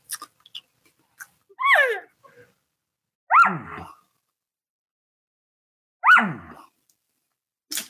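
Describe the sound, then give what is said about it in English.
Three loud, abrupt barks imitating an elk, blown through a calling tube, each a short hollow burst that drops in pitch, spaced a couple of seconds apart with quiet between them. “You know, usually barking, I'll bark through the tube just because the bark does have some pretty good depth.”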